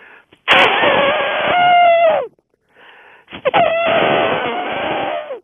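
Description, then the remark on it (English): A person imitates an elephant trumpeting twice over the phone, each a loud, brassy, drawn-out blare with a strained, quavering pitch that bends down at the end, with a short pause between them. “what are the animal sounds you use when you're telling the Noah's Ark story? Well, like elephant is one of my favorites.”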